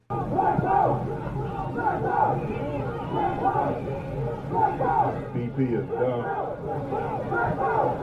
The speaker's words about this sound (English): Also, they chanted black power, these rioters, as they burned down a gas station, so that was exciting.